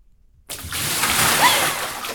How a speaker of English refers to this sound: Cold, gasp, plunges and brought back to life. Weapon of choice, a bucket of ice water. Time enough to choke, to cough, to breathe, and plunged again.